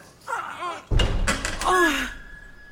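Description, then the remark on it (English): Heavy doors in a hospital corridor are shoved open into a ballroom with a loud thudding bang and a creaking, groaning swing, followed by a faint gasp. “Just push open these doors.”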